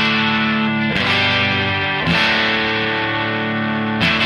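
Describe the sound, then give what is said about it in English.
Distorted electric guitar chords played loud as a dry signal through an Ibanez TSA-15H and a Fender Princeton Reverb Reissue amplifier, each chord struck and left to ring for about a second before the next, with no added echo or modulation. “So here's the dry signal.”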